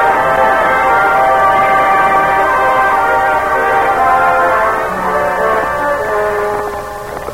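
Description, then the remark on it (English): A train decorated with flags and bunting, carrying the President north and east from Washington, D.C., runs steadily on the rails as it approaches its next stop after Baltimore: a loud, continuous rumble with sustained metallic ringing tones over it, easing slightly toward the end. No one speaks. “train approaches its next stop after Baltimore”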